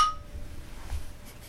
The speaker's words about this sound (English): I think we should take a sip. Yes. Shall we clonk? Clonk!